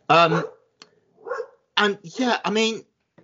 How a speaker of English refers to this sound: Sorry if you can hear that. Kiki is barking at something outside.